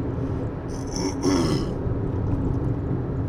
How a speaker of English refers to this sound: I'm going to try something hotter on my throat. I cannot clear my throat.